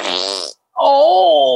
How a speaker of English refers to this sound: All of the farts are hurting you